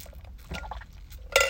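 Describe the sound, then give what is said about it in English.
Quiet sounds of someone getting a drink of water: a few small liquid sloshes and soft taps, ending with a brighter glassy clink. No one speaks. “Sorry, I had to get some water there.”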